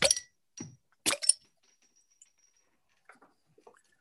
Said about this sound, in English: Right, and like always, I try to get the audio with the pour. Smoke is coming out of mine, man, if you can believe that.